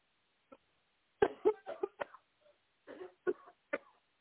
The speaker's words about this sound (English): All right. Take a deep breath and cough one more time.